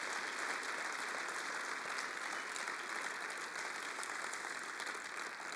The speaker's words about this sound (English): Can we applaud them and just, well done, guys.